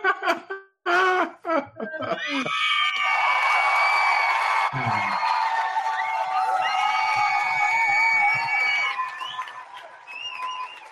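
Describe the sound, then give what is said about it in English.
A brief bit of voice gives way to a loud, sustained cheering-crowd sound effect with high whoops and whistles over a dense wash of applause-like noise, holding steady for about nine seconds. “The adoring crowds are back for another episode of the Click Nation's Comic Book Chronicles.”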